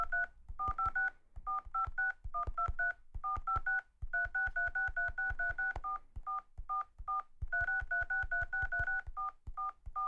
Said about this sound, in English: Why are you typing it in? Because I have to call them. Yeah, but couldn't you just press the recently called button on your phone?